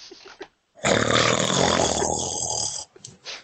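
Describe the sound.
A person imitates a loud snore with one long, rough, rattling breath lasting about two seconds, forceful, bracketed by brief quieter vocal noises before and after.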